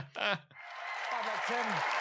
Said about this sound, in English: Well, all right, thank you. Not too much applause. That's quite enough, thank you.